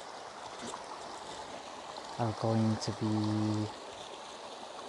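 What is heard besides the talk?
flowing river water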